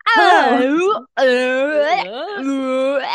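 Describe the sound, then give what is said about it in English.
A woman gives a loud, drawn-out voiced yawn, with gliding pitch and a brief pause before it stretches on again for a few more seconds. “She's yawning.”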